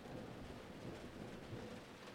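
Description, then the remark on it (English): A low, continuous rumble of rolling thunder, fairly faint, rolls on steadily over a soft hiss of rain, with no voices. “Oh, yeah, there's the thunder.”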